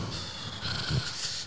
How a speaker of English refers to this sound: I keep leaning because I feel like everybody's gonna hear me breathing heavy